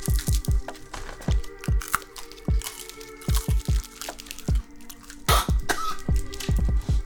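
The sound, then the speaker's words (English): Crunching as a hard novelty joke candy called Animal Toenails is chewed, a rapid irregular series of sharp cracks and crunches for several seconds with no one talking. “Crunchy?”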